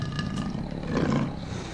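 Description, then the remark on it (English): A big cat growls in a low, rough, continuous rumble for about two seconds, swelling slightly in the middle, with no talking over it. “Haka growls bitterly, stands, and he and the chief lock eyes.”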